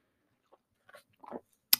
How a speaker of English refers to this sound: I'll even just take a sip of coffee.